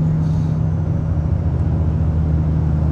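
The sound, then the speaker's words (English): A steady, loud low rumble of road and engine noise from a car being driven past a tractor trailer truck, continuous and even throughout with no talking. “And sorry, I was driving by a tractor trailer driver, and they make me so uncomfortable because they start swinging their trucks over because they're looking into my fishbowl of a car, looking at my legs.”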